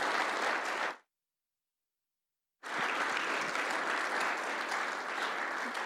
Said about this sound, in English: Thank you for coming. Could you guys give a round of applause